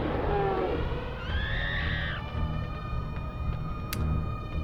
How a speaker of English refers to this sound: The echoes of a roar and cries kind of fill the back of your mind.